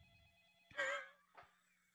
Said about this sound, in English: We're taking phone calls from our patrons, and we got a phone call right now. And who do we got on the line right now?